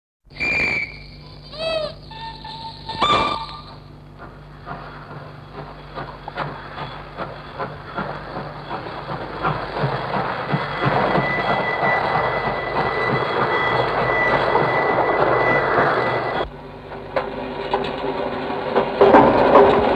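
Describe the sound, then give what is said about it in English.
A 1948 tape sound collage of railway train sounds, the work Etudes au chemin de fer (railway study), made from recorded real-life sounds cut up on tape: sharp whistle blasts open it, then a steady rhythmic clatter of wheels on track builds and rolls along before cutting abruptly into another rumbling train passage. “One of his earliest works came in 1948, a sound collage of train sounds, Etudes au chemin de fer, or railway study.”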